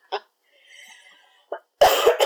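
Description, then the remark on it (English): A person coughs: two short, light coughs spaced apart, then a loud, harsh burst of rapid coughing at the end, with a faint murmur in the quiet gap between. “A podcast about horror movies and coughing.”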